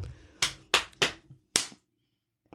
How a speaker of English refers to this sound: Next time I need you, I'll just slap some rocks together. Also, the idea of slapping rocks together is funny. It's not banging them together. It's yes, you gotta slap them.